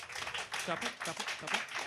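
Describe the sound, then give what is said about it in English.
Scattered, half-hearted clapping from an audience voting by round of applause on whether Xavier's is the worst fictional educational system, a thin steady patter of hands with a murmur of voices mixed in, never building into full applause. “Who thinks Xavier's is the worst educational system as a fictional universe, by round of applause.”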